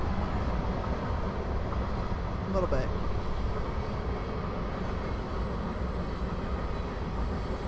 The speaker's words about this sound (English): I mean, I think that even though this was a train is going by, the BNSF train is going by right now, everybody. So brace yourselves.